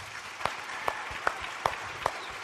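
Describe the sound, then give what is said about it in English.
A crowd applauds the worship musicians in a dense, steady wash of clapping, with a few sharper claps standing out at an even, regular beat. “I think they need a big round of applause for that.”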